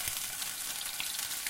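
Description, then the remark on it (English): Feta sizzles in hot vegetable oil in a frying pan: a steady crackle and hiss of frying, with dense popping that holds evenly throughout and no voices. “I just heated up a little bit of vegetable oil in a frying pan. And now I'm adding... You're frying the feta.”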